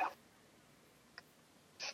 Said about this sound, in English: Sorry, the dogs was interfering.